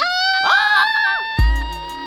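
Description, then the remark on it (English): High, sustained excited screams from a few voices rise and waver together, then a sudden low thump lands near the end while the shrieking carries on. “Indistinguishable screaming. Everybody's so excited.”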